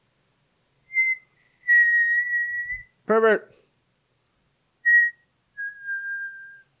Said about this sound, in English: As I was finishing the walk, the whistling noise started again.